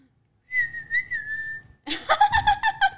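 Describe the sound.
A person whistles one steady, sustained note for over a second, clear, then breaks into several bursts of rhythmic laughter.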